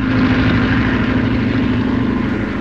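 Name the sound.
propeller plane flying overhead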